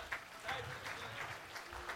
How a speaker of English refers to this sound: Why don't you clap your hands unto the Lord today?